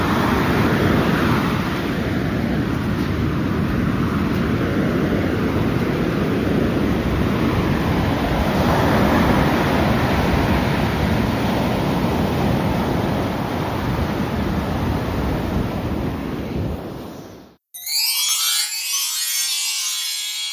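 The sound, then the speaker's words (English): Sea waves break and wash onto the shore at Kamala, Phuket, in a steady, loud roar with heavy low rumble, with no voices, before cutting abruptly to a quieter, higher-pitched outdoor sound near the end. “Anyway, I'll give you a bit more of the sea before I go.”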